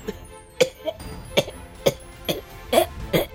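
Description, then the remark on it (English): A voice imitates a bad coughing fit after a cracking scream: six or seven harsh, raspy coughs in quick, uneven succession, fairly loud, with no other talking. “there and just, like, lets out what is supposed to be the most metal scream, but instead her, like, voice cracks and she starts coughing. And she coughs so bad that she, like, kind of, like, falls, but she's, like, over by the lady.”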